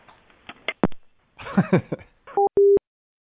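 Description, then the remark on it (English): Handset clatter and a brief muffled voice, then a telephone line tone sounds as the phone is hung up: two short, steady electronic beeps, the second louder and longer, clear before silence. “Hang up the phone.”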